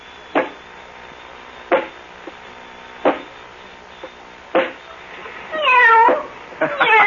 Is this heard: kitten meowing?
yes